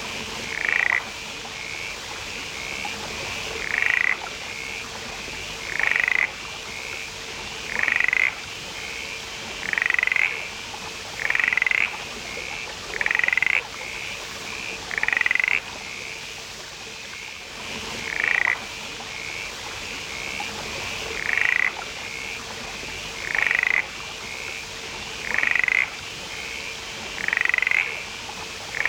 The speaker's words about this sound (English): For tens of thousands of years, there were these little frogs calling their hearts out in these rainforests, but now it's silent. And hear the sound of the mountain mist frog.